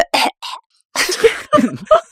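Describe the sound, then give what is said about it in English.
Loud coughing from a sick person in a quick series of about five harsh bursts, two short ones, a brief pause, then a longer rough cough followed by two more. “I can't laugh because it makes me cough.”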